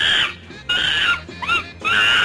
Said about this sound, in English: Oh, a chimpanzee. No, that was, in fact, a monkey.